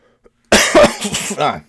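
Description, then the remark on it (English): A loud coughing fit: several harsh, raspy bursts in quick succession after a brief silence, with a rough voiced quality and no talking. “Just me coughing.”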